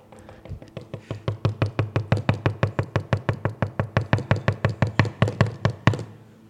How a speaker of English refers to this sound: He's knocking on the door.